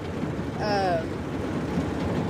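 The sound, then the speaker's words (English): Heavy rain pours down in a loud, steady wash of dense hiss that fills the whole clip, with a brief voiced sound rising over it near the start. “If you can hear the rain, we are so sorry. It's very loud.”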